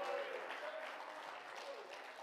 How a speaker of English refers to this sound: If you believe that tonight, clap your hands and shout unto the Lord.